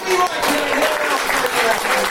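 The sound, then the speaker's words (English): A crowd at the Jet Lag bar claps and cheers in a steady, dense burst of applause as Kimi wins the race, loud and continuous throughout, with voices mixed into the noise. “Kimi wins to a very warm reception from the people here at the jet lag bar.”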